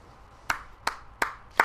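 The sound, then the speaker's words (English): Four sharp, evenly spaced hand claps ring out alone in a slow, deliberate rhythm, moderately loud, with quiet gaps between each clap. “Put applause on it.”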